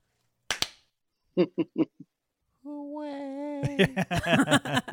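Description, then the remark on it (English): One sharp, crisp hand clap rings out on its own, followed after a pause by short voiced sounds and then a stretch of lively talking. “So for that, you get a single clap.”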